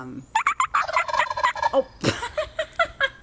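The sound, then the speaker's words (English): A rapid, warbling run of turkey gobbles, several birds calling over one another in quick, rattling bursts, loud with no talking. “If we can just get our producer to put in turkey sounds gobbles. of turkeys gobbling, I just think it would be fun to hear, you know?”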